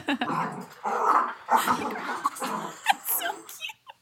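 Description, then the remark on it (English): A dog, just brought in from the dog park, growls and whimpers excitedly in a run of uneven bursts, grumbling and whining almost without pause for about four seconds before stopping abruptly. “I love when dogs, he's just like. Hur. He's so geeked up right now.”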